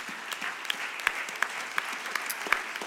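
An audience at Calvary Tabernacle, IBC, applauds steadily in appreciation, many hands clapping in a dense, continuous patter with a few sharper individual claps standing out above the wash. No one speaks over it.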